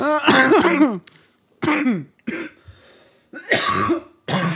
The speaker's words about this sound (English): God, that one hit on that blunt fucked me up. No, it's perfect. I cannot stop coughing.